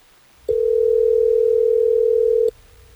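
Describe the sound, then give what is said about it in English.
A single steady telephone dial tone hums for about two seconds as hosts of radio station Hot 101.5 place a call, clear, then cuts off abruptly, leaving only faint low background noise. No one speaks. “Are you ready for us to get her on the phone?”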